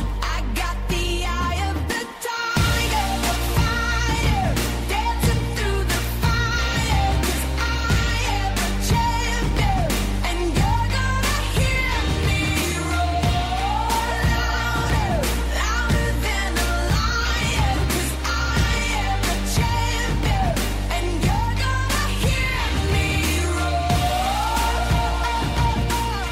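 A pop song plays at full volume, with a female singer's melody gliding over a steady, driving beat, thick bass and bright synths that continue without a break.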